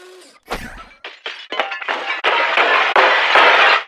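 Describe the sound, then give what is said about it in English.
A smart speaker plays a rapid series of smashing window-glass sounds, each crash brighter and louder than the last, building into a sustained, dense shattering roar with tinkling shards throughout, as the speaker is thrown through a real apartment window. “So we programmed the smart speaker to play a crescendoing sequence of smashing window sounds, and then we threw that through the window.”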